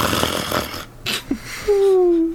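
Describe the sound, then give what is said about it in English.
A voice imitates snoring: a couple of breathy, rasping inhales, then a drawn-out buzzing, droning exhale that slowly sinks in pitch. “As you're staring at Omission, you hear, like, a snoring sound, like...”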